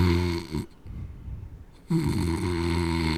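Two loud, rumbling snores bracket a short, quieter gap of breathy low noise; the snoring is heavy and buzzing, with a strong harmonic drone, and no talking is heard.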